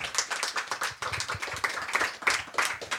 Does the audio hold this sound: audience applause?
yes